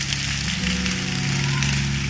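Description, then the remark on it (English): A crowd claps steadily in a dense, continuous wash of applause, with sustained low keyboard or organ tones humming underneath throughout. “Every single person, clap your hands.”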